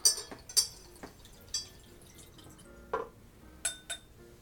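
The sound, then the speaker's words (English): Liquid swirls and sloshes inside a glass as it is rinsed, with several light clinks and drips scattered irregularly, fairly quiet, and no voices. “Yeah, rinse your glass.”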